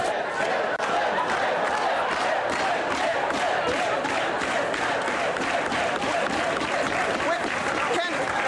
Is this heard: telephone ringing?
no